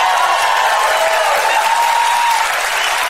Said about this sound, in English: That is an audience cheering a policy as progressive as FDR.